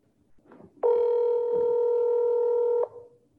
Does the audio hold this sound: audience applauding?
no